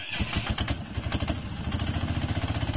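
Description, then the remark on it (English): The engine of a small homemade vehicle cranks and catches, then settles into a rapid, steady putter with loud, rhythmic low-pitched pulses and some metallic clatter, with no voices over it. “There he goes. Fires it up.”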